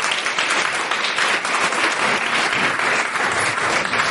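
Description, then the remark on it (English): A crowd of people claps steadily in a round of applause for a head teacher who won Head Teacher of the Year in 2017 for primary school, a dense, continuous wash of hand claps that stays loud and even from start to finish with no voices rising above it. “He won Head Teacher of the Year in 2017 for primary school, so I actually think that deserves a significant round of applause.”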